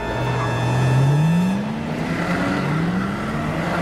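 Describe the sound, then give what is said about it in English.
A car engine steadily revs up as it accelerates, its drone climbing in pitch, briefly dropping as if shifting gear, then climbing again. Loud and continuous, with no voices. “He's speeding up.”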